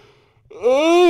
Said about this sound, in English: Yawn.